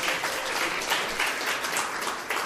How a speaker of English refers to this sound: Let's give a good round welcome and applause